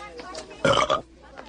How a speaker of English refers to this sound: Classic burp.